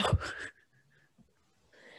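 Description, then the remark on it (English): A single loud, sharp sneeze bursts out at the start and cuts off within half a second, followed by near-quiet with faint soft sounds and a breathy rustle at the end. “Oh, I had to sneeze 1 second.”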